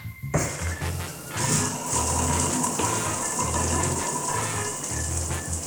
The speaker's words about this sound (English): permission for shower access. Daily ration, please. Permission granted. Your 3-minute water ration begins now.